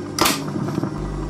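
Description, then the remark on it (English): A single sharp mechanical clunk as the mechanical arm of a reel-to-reel tape machine drops into place, followed by a low, steady static hum with faint rattling. No voices. “Once again, the mechanical arm goes down.”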